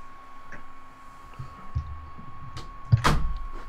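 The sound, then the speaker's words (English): A door opens with a few low thuds and rattles as a man walks in, then a sharper knock as it shuts against a quiet hum. No one speaks. “Yep, he just walked in the door.”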